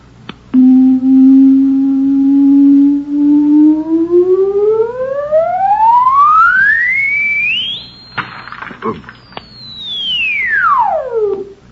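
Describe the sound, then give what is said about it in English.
A loud, pure electronic tone of tremendous frequency, sent out as directional sound waves from a radio-like sound box, starts low and climbs steadily to a piercing high whine, holds briefly amid a short crashing burst, then glides smoothly back down in pitch. “It produces sound waves with tremendous frequencies.”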